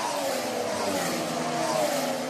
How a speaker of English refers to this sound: So let's listen then when this turbo hybrid era started. Here's what a 2014 engine sounds like.